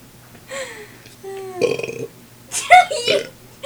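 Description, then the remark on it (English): A series of loud burps, three drawn-out belches one after another with brief pauses between them, the last one especially forceful and gurgly. “See, this is what horrible Americans do. They just burp.”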